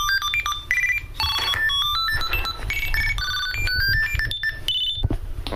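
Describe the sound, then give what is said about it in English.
A tracker tag inside a Victor Trek, rung by asking Siri on an iPhone to find it, rings with a fast, continuous melody of high electronic chirps and beeps, hopping between pitches for several seconds, fairly loud, with no one speaking. “I'm ringing it now.”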